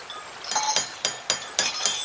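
Bowls clink together six times in a quick, uneven series, each tap bright, ringing and clear, with no voices.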